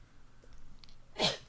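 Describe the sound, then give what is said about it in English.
A single quick, sharp sneeze bursts out near the end, loud, following a short stretch of quiet background noise. “Bless you.”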